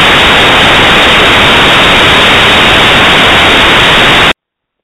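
Loud, steady hiss of static from a caller's call fills a band-limited phone line for about four seconds, harsh and unbroken with no voice, then cuts off abruptly into silence.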